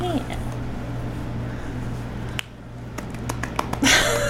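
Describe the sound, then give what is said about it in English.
A handful of soft, light golf claps, short and crisp, arriving in a loose, uneven patter over a low steady hum, with a brief murmur of voice before them. “Golf claps.”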